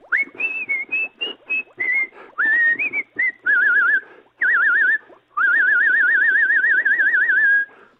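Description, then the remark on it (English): A man whistles the tune Camptown Races in short bright phrases, then finishes with a long, sustained, high warbling note that wavers rapidly before cutting off. Fairly loud, no talking. “He got really high, dragged out that last note there.”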